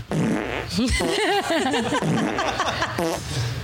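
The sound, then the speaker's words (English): A loud burst of sputtering, warbling fart noises runs continuously for several seconds, rising and falling in pitch, with faint chuckling mixed in. “Ito, sure give that girl some fart noises.”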